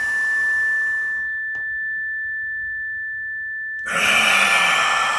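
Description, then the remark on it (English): During a guided breathing exercise, a long, airy exhale fades out, followed by a pause and then a soft deep breath drawn in, with a faint steady tone sustained underneath throughout. “We are breathing.”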